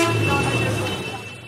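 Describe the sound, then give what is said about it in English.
A tuk-tuk (motorised tricycle taxi) sounds its electronic horn in one steady, buzzy tone, rich in harmonics, holding loud for about a second and a half before easing slightly at the end, with no voices. “Bikes and cycle rickshaws themselves get out of the way of motorised tricycle taxis, sort of tuk-tuks. And they have an electronic horn to make that happen.”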